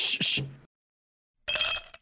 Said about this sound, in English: Can you drop another ice cube?